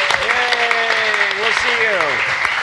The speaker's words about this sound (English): Big round of applause there.